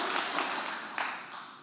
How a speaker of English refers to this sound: Can I get a better clap than that? Can I get a better clap than that? He is worthy. He is worthy.